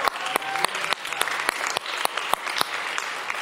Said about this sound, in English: If you love Jesus, go and give him a hand clap. Come on.